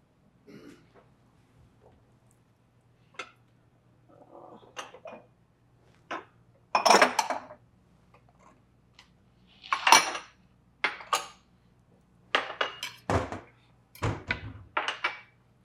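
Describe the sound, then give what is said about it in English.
Dishes clink and clatter as they're grabbed, a run of sharp, bright knocks of plates and cutlery, irregularly spaced with short pauses between, over a low steady hum. “I'm going to grab some dishes.”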